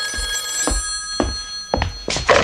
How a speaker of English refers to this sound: the phone!